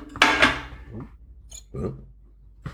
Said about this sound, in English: Just me dropping my mug, don't worry.